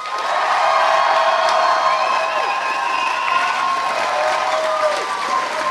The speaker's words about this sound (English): Big round of applause for everybody from round one. Great job, guys.